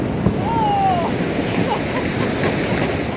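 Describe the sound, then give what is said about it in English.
A research ship carrying scientists, which sailed north from a port in Norway, plows through Arctic sea ice while looking for a thick ice floe, with a steady, loud rumbling wash, overlaid by scraping crunches and a brief high creaking squeal, continuous with no voices. “That's what it sounded like as our boat plowed through the sea ice as we looked for an ice floe that was thick enough to call home base for an entire year.”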